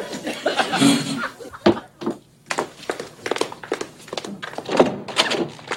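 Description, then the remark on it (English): A door thunks open partway through as it is answered, amid bursts of chuckling laughter and some brief talk, with a busy sound throughout. “Get the door,”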